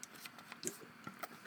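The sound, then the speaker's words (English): A quiet sip of seltzer: soft scattered clicks and fizzy crackles with a few brief slurping bursts, no voices. “That's why I'm going to have a sip of seltzer.”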